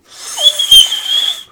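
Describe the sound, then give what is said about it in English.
A person whistles one steady, high-pitched note for over a second, breathy and airy with a lot of hiss, fairly loud, with no talking. “No, but I'm good at whistling.”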